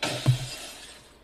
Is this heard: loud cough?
no